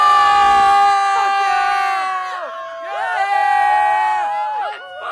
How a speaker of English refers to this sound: and we just fucking rocked the house down at Bottom of the Hill in San Francisco, California. Listen to this fucking crowd!